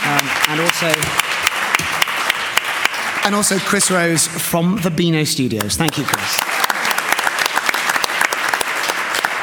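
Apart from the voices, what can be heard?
audience applause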